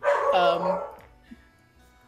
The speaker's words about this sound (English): Sorry, my dog is being a good boy. He's just so excited to hear all this great Ashoka behind-the-scenes stuff.